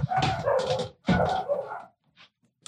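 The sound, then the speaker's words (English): Two loud, drawn-out dog barks, followed by a couple of faint short yips as the sound trails off into quiet. “Oh, do you hear the dogs?”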